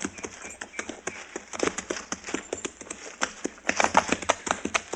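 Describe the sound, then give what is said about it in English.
Horse hooves clip-clop steadily at a brisk walking pace as riders follow a man's trail, many irregular knocks over a faint low rumble, with no voices present. “You ride to one side, and I'll follow his trail.”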